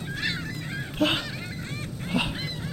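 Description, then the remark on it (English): A holographic seagull, set off by pressing a big red button on a remote, squawks three times in quick succession, harsh, nasal cries rising and falling, loud over a low, steady background rumble. “Why is there a holographic seagull circling my asshole? No, don't dive bomb!”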